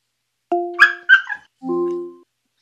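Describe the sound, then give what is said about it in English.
A short burst of dog barks and yips played back through an Alexa smart speaker asked to bark, a few sharp tonal calls followed by a longer whining bark, with no talking. “Well, that wasn't too happy of a dog.”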